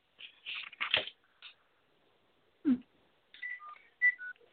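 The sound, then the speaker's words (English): A phone keypad sends a quick run of short, steady dial tones, each a separate clear beep, after some scattered clicks and rustling handling noises, as someone dials in to a live call-in line from another phone. No one speaks. “I'm actually calling in the show and see what it says on another line.”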